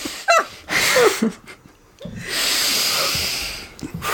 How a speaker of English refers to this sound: Okay, everyone do yogic breathing.